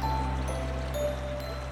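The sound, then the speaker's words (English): A steady, low rush of a waterfall heard from a distance, a continuous deep roar with no breaks and no voices. “Your raft begins to turn a corner and you hear the sleepy bellow of a waterfall.”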